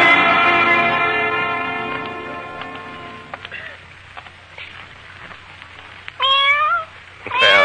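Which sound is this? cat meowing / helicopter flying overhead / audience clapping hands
cat meowing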